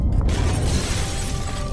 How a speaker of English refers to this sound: It was a little past 4 when it started. What is that? An earthquake! It's gotta be an earthquake! But we're on the East Coast! We don't have earthquakes like this, do we? We do now!